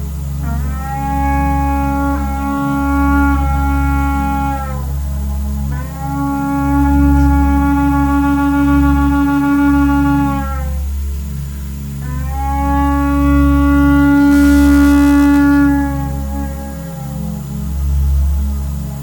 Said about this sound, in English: as we blast this shofar, I'll lift up a shout with this.